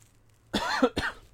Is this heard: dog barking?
no